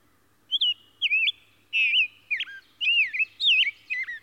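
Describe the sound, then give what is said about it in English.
A rose-breasted grosbeak sings from a tree a clear, sweet warbling song of quick rising and falling whistled phrases, fairly loud, with short pauses between bursts and no other sounds. “As I come up under the tree, he casts his eye down at me, but continues his song.”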